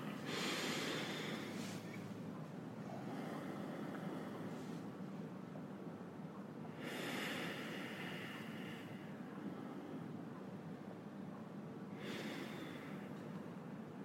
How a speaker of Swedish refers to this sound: Om jag bara lyssnar på ljudet när ni andas in genom näsan. Ska vi andas in genom näsan nu? Vi gör det allihopa. Ja, yes, då gör vi det. Vi andas in.